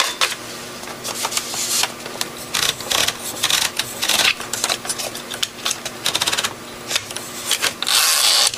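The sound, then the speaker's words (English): Rapid mechanical clacking of typewriter keys, irregular bursts of sharp strikes with occasional louder thunks, fairly loud, no voices. “Oh, that's a typewriter.”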